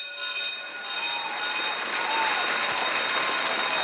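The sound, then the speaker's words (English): An electric school bell rings five times in loud, shrill bursts, its metallic clanging tone broken by brief pauses before settling into one long continuous ring. “And this week's celebratory sound, five school bells in honor of school letting out for most kids, I think, across the Triangle right around this time.”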